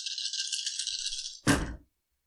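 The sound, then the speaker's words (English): Dice, including bonus and stress dice, rattle steadily in a cupped hand or cup for over a second, then clatter loudly onto a hard surface in a short, tumbling burst before falling silent, rolled for a ranged shotgun attack in a game. Clear, no talking. “You'll get whatever bonus dice you get for the shotgun.”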